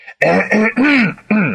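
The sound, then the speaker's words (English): A loud, close voice performs a vocal imitation of throat-clearing, three voiced, rasping bursts in quick succession, the middle one longest and sliding in pitch. “He coughed more loudly.”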